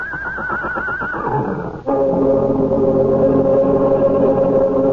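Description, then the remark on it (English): A huge horse named Malachi, ears flat against his skull and eyes rolling, lets out a loud, agitated whinny with a shrill, wavering call, then shifts into a harsh, sustained snorting neigh that stays forceful to the end. “Oakes looks from the small man, writhing in pain, to the huge horse, his ears flat against his skull, his eyes rolling wildly at the farmer.”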